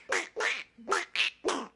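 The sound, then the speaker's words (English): Five loud, nasal duck-call quacks in quick succession from a Christmas album of classic Christmas songs, clear with brief gaps between them, no voices or other sounds around them. “what is it, just a bunch of duck calls?”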